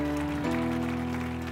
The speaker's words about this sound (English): Come on, give them a big hand clap. Rejoice with them.